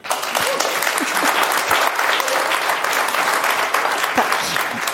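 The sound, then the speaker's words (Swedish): Steady applause from an audience fills the whole stretch, dense and sustained at an even level with no pauses, the clapping sounding lively. “Jo, men det går bra att applådera.”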